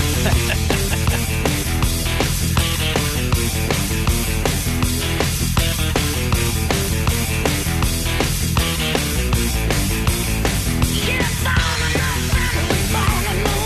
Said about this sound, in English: There is some new music here for you, which I think you'll probably be able to guess pretty quick. This is the second little teaser from their album that is coming out. Take a listen to this.